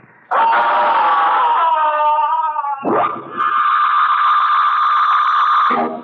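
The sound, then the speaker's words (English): As the music stops, a man lets out two long, loud, strained screams, the first wavering and trailing off, the second held steady and cut off abruptly, after a brief near-silence. “Soon the music will stop and … will scream.”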